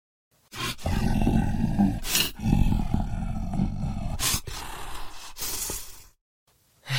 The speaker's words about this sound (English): That was one of my new transition monster roars.